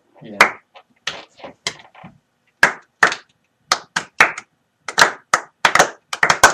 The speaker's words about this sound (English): Played the last two baseball games of my career. Played again. Hell of a career it was. Wait, I think that deserves a slow clap.